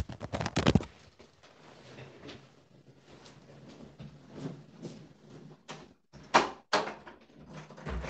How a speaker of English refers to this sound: Just 1 minute, I have to open the door.